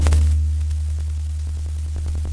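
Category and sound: fault, static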